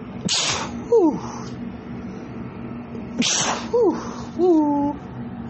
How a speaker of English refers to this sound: Whew, excuse me, I'm about to sneeze.